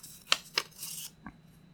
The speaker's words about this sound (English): I hate the paper shuffle sound on the mic. Yeah, I do, too.